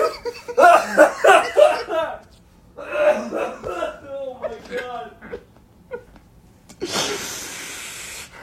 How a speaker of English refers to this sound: I feel, by the way, I'm so sorry for all the people who can hear me coughing. I feel so bad.